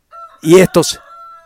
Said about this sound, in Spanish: Y el gallo está de acuerdo.